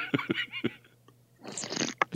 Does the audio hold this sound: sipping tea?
yes